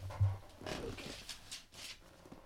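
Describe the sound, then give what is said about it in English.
An Italian greyhound shifts around on a person's lap, giving a few soft, breathy snuffles amid quiet rustling, spaced irregularly over a couple of seconds with no one talking. “One dog is on my lap. Charlie's on my lap, and it's just going to be this way.”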